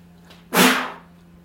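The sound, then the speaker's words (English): A single sharp sneeze bursts out into the mic, a sudden breathy blast that fades over about half a second, with no talking around it. “I just sneezed, I'm sorry.”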